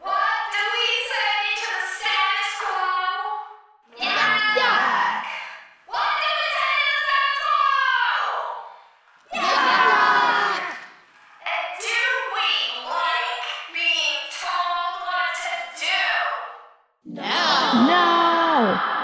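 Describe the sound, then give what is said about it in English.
A group of campers shouts a rough, growling chant back in a series of loud, repeated bursts with brief gaps between them, energetic, with no other sounds around them. “Some of them respond, some echoing her growl, some mumbling, and some looking bored. She repeats it louder each time, and most of the campers reciprocate.”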